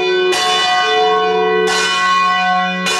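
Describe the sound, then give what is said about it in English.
Church bells ring loudly in an abbey bell tower, with three heavy strikes about a second and a half apart. Each strike leaves a long, shimmering hum of overtones. No voices are heard. “We met Brother Martin, who gave us a tour up the winding staircase of the bell tower.”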